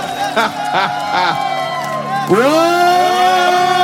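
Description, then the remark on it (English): A crowd at a comedy show roars steadily, with several short rising whoops early on and a louder swelling cheer that takes over for the second half. “I'm hearing the crowd pop a little bit.”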